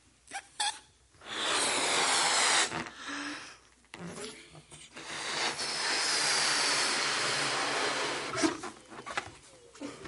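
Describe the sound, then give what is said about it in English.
Air hisses steadily into a balloon during a science experiment, in two long, breathy rushes separated by a short pause, with a few quick puffs at the start and soft breaths between. “Christians are a lot like balloons, okay, full of hot air.”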